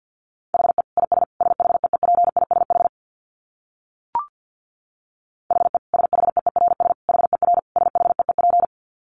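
Rapid Morse code at about 50 words per minute: a steady mid-pitched tone keyed in quick dits and dahs, sent in two long runs separated by a pause with a single short click.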